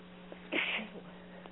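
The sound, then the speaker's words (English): A woman gives a single sharp sneeze over a steady low electrical hum, loud, lasting under half a second before it goes quiet again. “The channel is sneezing.”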